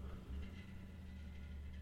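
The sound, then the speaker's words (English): A faint, steady low rumble of a car engine being started up outside a studio, a muffled droning hum that holds for a couple of seconds with no voices over it. “Someone outside the studio is starting up a car that sounds like it's not going to get them more than halfway down the road.”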